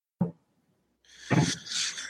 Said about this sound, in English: And that knocking you hear, oh yeah, it's totally Jade Helm.